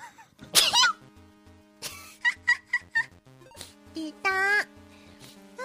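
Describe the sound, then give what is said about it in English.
A single sharp, airy sneeze bursts out near the start, followed by a string of short, high-pitched vocal sounds and a brief squeaky voiced cry, all fairly loud. “There's compilations of her sneezing.”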